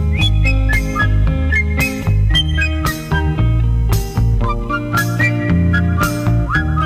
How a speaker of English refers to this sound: I think this record is much too quiet. I cannot hear you whistling the way you should be. That's better.